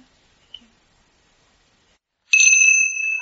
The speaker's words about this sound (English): And so would somebody be willing to ring the bell at a 3:45?